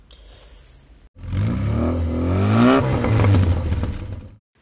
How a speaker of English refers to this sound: we're on location today, well, in my car again, in the car park, and somebody's just pulled up next to us in a grey Audi.